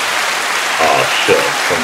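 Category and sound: crowd, round of applause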